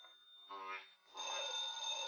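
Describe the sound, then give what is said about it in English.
A telephone bell rings in a bright, steady jangle that swells and continues for a couple of seconds, with some muffled noise around it. “He always picks up the phone unless I'm there to stop him.”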